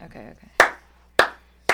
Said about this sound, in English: I mean, I'm just like, we can start a slow clap. Just go nice and slow here.